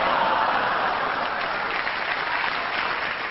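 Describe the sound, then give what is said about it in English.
A game-show audience applauds a contestant's effort, a dense wash of many hands clapping at an even, loud level throughout, with no distinct individual claps or voices standing out. “I know you love what he was doing, and he does need a resound of applause for it.”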